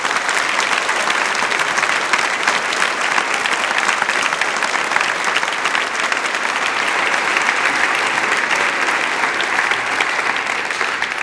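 Steady, sustained applause from a concert audience for the audio-visual technical desk team, a dense crackle of many hands clapping at an even level for the whole stretch, with no voices standing out.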